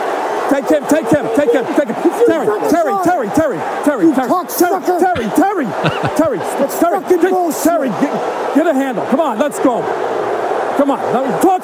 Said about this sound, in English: Okay, so now you hear the crescendo of the crowd. That's because Terry is now about to get involved and take this to the next level.